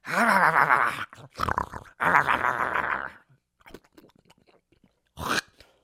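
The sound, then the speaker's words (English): A voice mimics loud, exaggerated chewing with groaning, munching noises, then goes quiet with faint smacks before a sharp spitting burst at the end. Loud, with no words spoken. “When the savagery of life comes at you, it's going to eat you up and spit you out like this.”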